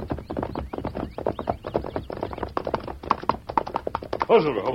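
Steady clip-clop of horse hooves on hard ground as riders urge on the horses Silver and Scout toward a riderless horse at the entrance to a pass, a quick rhythmic run of hoofbeats that ends with a brief whinny-like cry, with a voice speaking over part of it.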